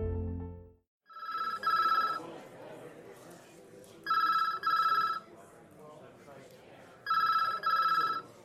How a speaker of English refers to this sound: The phone rings yet again in the busy precinct. She picks it up.